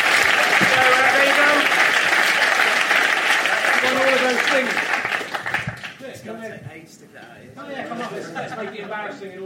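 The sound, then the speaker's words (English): A crowd breaks into loud, dense applause for a person who has won, holding steady for several seconds and then thinning out, with voices talking over the fading claps. “Round of applause.”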